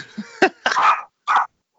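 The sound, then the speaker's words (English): A dog barks a few times in short, sharp bursts, one drawn out slightly longer, with brief pauses between them. No one is talking. “Nice dog in the background.”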